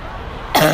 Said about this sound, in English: Wait, I'm going to end this with a cough. Okay, ready?